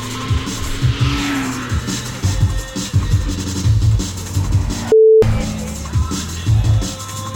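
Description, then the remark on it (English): Car engine noise in an audio driving game, with a steady motor hum, a rising whoosh as one car to be avoided closes in, and brief tire squeals, loud, interrupted by a short beep. “Stuff to avoid cars, but hear them over the radio.”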